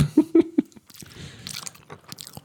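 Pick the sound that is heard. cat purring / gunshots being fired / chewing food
chewing food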